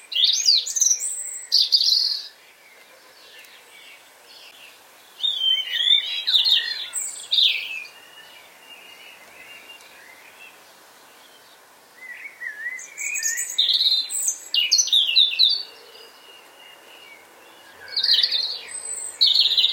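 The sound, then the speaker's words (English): A European robin sings its soft autumn song in several separate phrases of high, thin, wistful warbling notes, separated by short pauses, clear over a faint background hiss. “Voted the nation's favourite bird in many polls, it's also known as the gardener's friend.”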